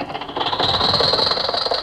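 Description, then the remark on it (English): Jack's old car engine sputters as it starts, then catches and keeps running with a rapid, steady, rattling chug. It is fairly loud, and no one speaks. “Gee whiz, Jack, why don't you trade this car in? Why should I? This car's all right.”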